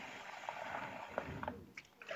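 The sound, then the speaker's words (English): Liquid is poured steadily from a 4-cup measuring bowl all around and over chicken in a hot skillet, a continuous soft trickle broken by a few brief splashes and spatters, with no one talking. “And I'm just kind of pouring all around, all over the chicken.”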